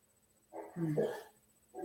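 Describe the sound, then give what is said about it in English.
A dog named Jackson barks in a short, drawn-out burst followed by the start of another, moderately loud, with nothing else going on around it. “And Jackson is not, the dog is not having it.”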